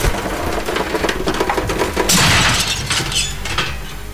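A door is torn from its frame: rough scraping and creaking build into a loud, splintering crash midway, followed by scattered breaking debris that trails off.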